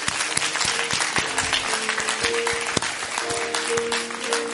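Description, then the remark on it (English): A church crowd gives the Lord a hand clap offering, a dense, steady wash of hand clapping that holds at a fairly even level throughout, with a few sharper individual claps standing out and faint tonal sounds underneath. “Let's give the Lord a hand clap offering.”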